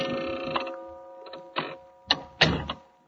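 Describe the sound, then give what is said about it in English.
A clock in an office ticking with a handful of sharp mechanical clicks, slightly uneven in spacing, over a steady low electrical hum; no one speaks. “Once again, I sat alone in the office, listening to the clock and waiting for some unimportant item to come over the wire from Europe.”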